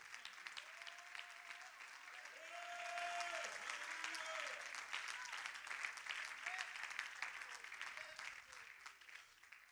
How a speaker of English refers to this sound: Would you clap your hands one more time? Would you really receive that into your spirit? Go ahead.